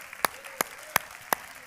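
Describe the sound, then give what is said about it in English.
Hands clap to the Lord in a steady, even rhythm, five sharp, crisp claps about a third of a second apart, against a quiet background. “Clap your hands to the Lord right now.”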